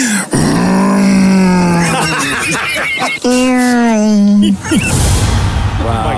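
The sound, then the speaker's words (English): A voice imitates a car, revving and roaring with rising and falling pitch in a few loud, sustained bursts and ending in a rough, growling rumble. “Car sounds.”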